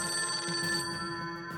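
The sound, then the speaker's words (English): An old-style telephone bell rings steadily, a continuous metallic trill with bright tonal overtones, fairly loud, with no voices present: a phone call to Assistant DA Vincent McDevitt's team from Sing Sing Prison in New York in early 1939. “In early 1939, Assistant DA Vincent McDevitt's team received an intriguing phone call from Sing Sing Prison in New York.”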